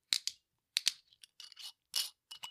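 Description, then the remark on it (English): Someone cracks open a sweet lemon-flavored drink: a series of short, crisp crinkling and tearing bursts in an uneven rhythm, with no talking. “Well, Here we go. Crack it open.”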